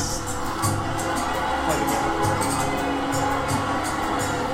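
A large crowd cheers in a dense, steady roar, with many voices blending into continuous noise that holds at the same loudness throughout.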